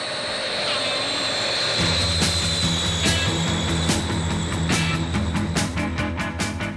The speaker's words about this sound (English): And it's just this jet plane at the beginning of the song. And I remember hearing that in the record and thinking, oh my God, that's so cool that they've got this jet in the song, you know,